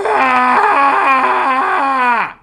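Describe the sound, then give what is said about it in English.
A voice imitates Chewbacca's Wookiee roar: one loud, sustained, warbling growl whose pitch wobbles in steps for about two seconds before sliding down and cutting off, with no other sounds. “There's a little Chewbacca for you.”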